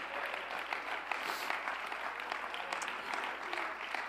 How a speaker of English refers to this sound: Oh, clap your hands unto the Lord Jesus today.